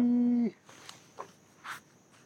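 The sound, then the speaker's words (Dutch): A yellow-throated toucan gives one loud, steady, nasal call lasting about half a second. Afterward only faint, scattered background rustles and sounds remain. “Ik hoor hem. Hier rechts zit jouw toucan.”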